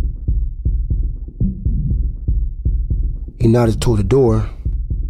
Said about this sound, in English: I mean, I think I played it cool, but my heart was beating fast as hell.